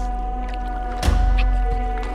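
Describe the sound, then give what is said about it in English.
A single oar stroke splashes and knocks against a boat midway through, set against a steady low hum of water and background noise; no one speaks. “Head to the boat!”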